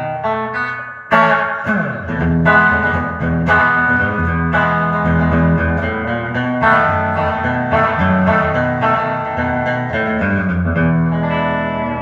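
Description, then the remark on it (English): Fuzz-distorted electric guitar, a Gretsch Streamliner P90, played through a TC Electronic Echo Brain delay into a Fuzz Face, playing a sustained, gritty riff with echoing delay repeats trailing each chord, steady and fairly loud throughout with no talking. “And TC Electronic Echo Brain into a fuzz face.”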